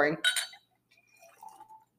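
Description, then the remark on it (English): Sparkling wine from a corked bottle being poured into glasses: a bright glassy clink at the start, then a faint, thin fizzing trickle with a soft rising ring as the glass fills. “So we're pouring.”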